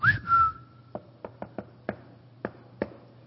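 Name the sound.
person whistling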